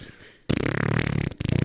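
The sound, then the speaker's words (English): A voice imitates a long, buzzy fart, a sustained rasping blurt that cuts off briefly near the end, then sputters out in a short final burst. It is loud, with no words spoken. “I forget which character it is in Family Guy, but, like, you, like, get home after you held the fart in, and then you just, like, laying on your side, and you, like, lift your leg and just, like...”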